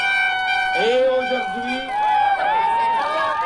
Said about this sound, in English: It certainly wasn't easy to deliver a speech over the noise of the protesters who came equipped to make all the noise they wanted.